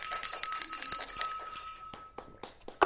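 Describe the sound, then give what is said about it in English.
A small hand bell shakes rapidly for about a second and a half, its bright metallic ring lingering and fading. A few soft knocks and clinks follow, then a last sharp tap. “I couldn't find the rest of the bells because somebody took them.”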